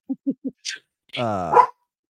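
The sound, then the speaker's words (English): A dog barking at shadows outside gives three quick, soft low woofs in a row, then a short pause and one longer, louder drawn-out bark. “And I got a dog barking at freaking nothing right now.”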